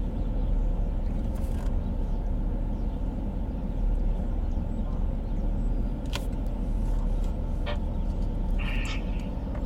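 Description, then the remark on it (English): Steady low engine rumble fills a Pilot truck stop, like idling heavy vehicles, with occasional brief clicks and a faint high chirp cutting through the constant drone. “I'm sitting at a Pilot truck stop, so I'm wondering if someone's got like a scanner or something that's interfering with the signal.”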